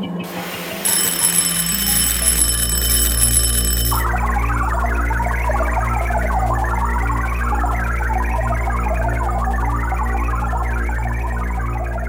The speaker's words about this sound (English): Runner, this is the last gate. Use your key now. When the bell sounds again, use your key.